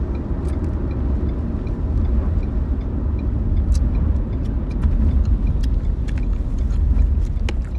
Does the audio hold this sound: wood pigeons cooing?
no